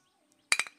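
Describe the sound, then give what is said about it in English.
A quick cluster of bright glass clinks, two or three touches in rapid succession, clear, as glasses meet in a toast of cheers, with a ringing tone fading after. “You could hear the sound.”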